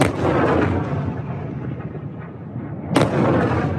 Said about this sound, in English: China has been amassing large formations of planes and ships all around Taiwan, and now the shooting has started, so these are live fire drills.